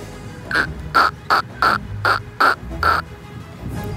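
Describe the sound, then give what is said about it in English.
A woman in a park imitates a duck to summon one, letting out seven harsh, nasal quacks in a quick, fairly even series, loud, with no other talking. “She can obviously do a duck noise.”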